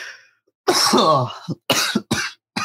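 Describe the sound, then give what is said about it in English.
A harsh, raspy cough rings out, followed by three or four shorter hacking coughs in a quick broken sequence, with brief pauses between them. “Mostly because my worst nightmare is about me coughing. And it's about to happen.”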